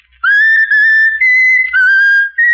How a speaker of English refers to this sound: Now whistle my country tis of thee, ….